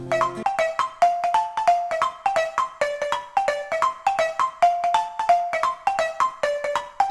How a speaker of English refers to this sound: Here's one of many marimba bands that used to exist in a number of communities in and around the Vancouver Island area. These guys are from Duncan. I have a theory that everyone loves marimbas.